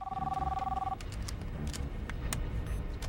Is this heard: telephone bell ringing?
yes